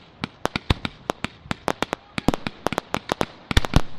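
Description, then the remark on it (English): A fireworks sound effect: rapid fireworks crackle in a dense volley, sharp pops bursting every fraction of a second, growing busier and louder toward the end, with no voices. “Cue fireworks.”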